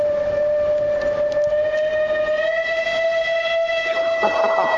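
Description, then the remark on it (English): A long, steady hoot blown gently through both cupped hands as an attempt at an owl call, sounding much like a steam train whistle, held loud and unbroken for several seconds with no one talking. “That's a flipping train. That's a steam train. Ain't an owl.”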